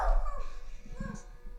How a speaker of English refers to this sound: My God, my dogs are going, they're maniacs, man.